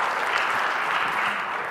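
An audience breaks into steady, dense applause, many hands clapping together in a continuous wash of sound with no talking over it.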